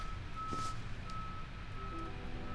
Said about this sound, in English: And externally, you can hear there's a garbage truck. I don't have my sound, my timing set up quite yet, recording from my bedroom, which is currently the quietest room in my house, but we're picking up a little beep, beep, beep, beep, which is good.